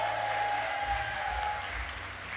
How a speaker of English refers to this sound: Keep cheering, keep cheering. Keep going.